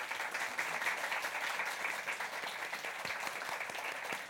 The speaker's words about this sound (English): A big round of applause.